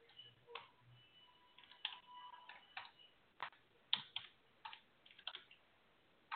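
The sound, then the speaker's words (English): Irregular clicking of keys on a computer keyboard as someone types in a web address, a couple dozen sharp taps in uneven bursts and pauses, fairly quiet, with no one speaking. “All right, I'm typing in. So I can hear you typing away.”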